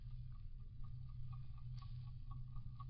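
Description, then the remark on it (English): Steady, rapid ticking like an alarm clock, faint and evenly spaced, coming from the nose of a casing and heard through a stethoscope, over a low constant hum with no one speaking. “It's not buzzing. It's ticking.”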